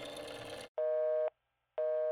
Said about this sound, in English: Waiting a few minutes, they called again and got the same busy signal. This happened over and over again. Apparently, they had not anticipated that the lines would be tied up by the media and families of the missing children looking for information.